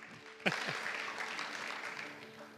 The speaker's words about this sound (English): Round of applause for all of our four willing volunteers.